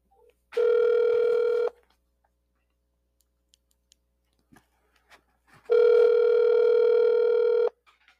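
A telephone ringback tone sounds twice as a phone call is placed: a steady electronic buzz of about a second, a long gap with faint clicks, then a longer second ring. It is clear, with no voices.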